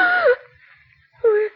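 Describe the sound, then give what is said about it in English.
A woman's stifled scream as she opens her eyes in bed at three o'clock and sees a figure in white: two short, strained, moaning cries, each sliding downward in pitch, separated by a brief quiet pause. Both bursts are fairly loud, with no talking. “Slowly, Mary opens her eyes and stifles a scream.”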